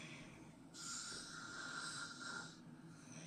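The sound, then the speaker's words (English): A man in a hotel gives a single long, rasping snore, a drawn-out noisy inhale lasting about two seconds, with quiet background before and after and no talking. “My bug bite are people who snore. That is a real Video.”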